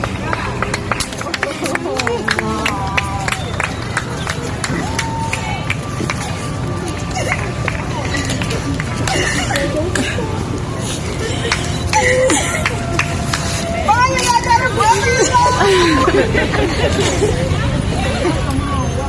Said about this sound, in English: The tears, screams, and cheers erupted.